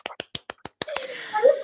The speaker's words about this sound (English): first they showed this episode to a theater full of Leverage fans and that there was a huge cheer at this next moment, which was the dramatic reveal of Detective Bonanno. Can we give a round of applause?